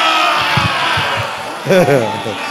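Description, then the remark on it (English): Several boys shout over a steady wash of crowd noise, with a loud burst of raised voices near the end rising and falling in pitch before dropping back into the background din. “All of these boys who are shouting here, the reality is that where is their fruit?”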